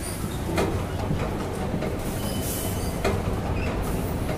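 A loud, steady rumble of a train moving through an underground metro station, with rhythmic clacks of wheels over rail joints and a faint high squeal, no voices.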